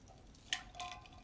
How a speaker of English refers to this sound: I got to take a sip of water. Hold on.